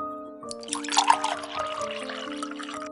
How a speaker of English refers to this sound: as he poured warm milk from a metal jug into two porcelain cups.